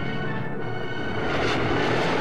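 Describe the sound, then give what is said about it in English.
The Millennium Falcon's engines roar to life as it heads for Bespin: a steady, dense whooshing rumble with a faint whining hum layered over it, holding loud and even for about two seconds with no voices. “At a safe distance, he activates the engines and heads for Bespin, home of Lando Calrissian.”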